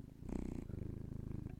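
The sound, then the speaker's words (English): A cat purrs close to the microphone, a steady low rumbling vibration pulsing in a fast, even rhythm with no voices present. “Can you hear his purr?”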